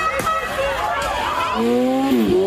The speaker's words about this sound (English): This guy revved his motorcycle and did a burnout and drove on a homeowner's lawn.